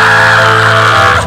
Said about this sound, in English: The Lord just said unto me, let the people scream and let them jump, for the devil is here, the sound of thy people, and it's the sound of restoration. Come on, jump! Jump! Jump! Scream!